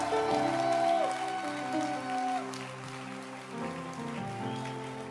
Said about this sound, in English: Are you happy to be in church? I can't feel your happiness. Are you really happy? Then clap your hands again.